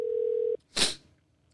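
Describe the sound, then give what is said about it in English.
A steady telephone dialing tone hums for about half a second, then cuts off abruptly, followed by a short burst of hissy noise and a faint click near the end. No one speaks. “we call from a particular app, and it'll block it because it seems like a spam call”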